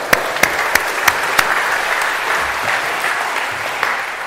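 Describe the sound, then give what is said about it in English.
A room full of people claps steadily for the performers who played angels in a retelling of Jacob's dream, a dense patter of hands with a few sharper, louder claps standing out near the start, filling the whole moment without any talking. “We give them a round of applause.”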